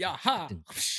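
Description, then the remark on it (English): A voice shouts an energetic exclamation, then makes a sharp, hissing burst with its mouth, imitating the crack of a whip. It is loud and brief. “Whip sound.”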